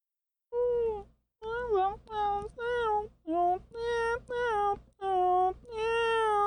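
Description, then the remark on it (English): The Nyan Cat meme song plays: a high, synthetic, meow-like voice chants quick, bouncy repeated syllables in a steady rhythm, loud and alone, with the melody stepping up and down. “There's this, like, strange sound that's making its way through your cabin.”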